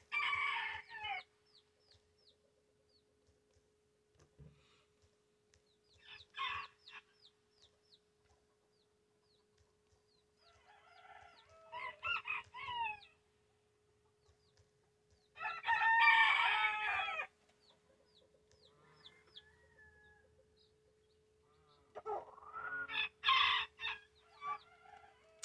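Chickens cluck in short squawky bursts while a rooster crows, the calls coming in five or six irregular outbursts, fairly close, over a faint steady hum, with no voices.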